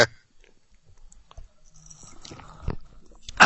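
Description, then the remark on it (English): People knock back a shot of tequila: quiet mouth noises, small wet clicks and swallows, with a sharp burst at the start and again at the very end. “Do we do this shot right now? Yeah, let's do it.”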